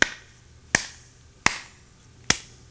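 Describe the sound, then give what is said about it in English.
Crisp finger snaps ring out alone in a sparse, slightly uneven rhythm, about five sharp clicks with short decays, snapping a 3-2 clave pattern. “Somehow I end up doing a 3-2 clave.”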